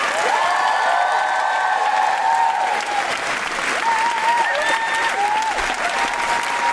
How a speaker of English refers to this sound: And keep that applause going for another Guilty Feminist favorite.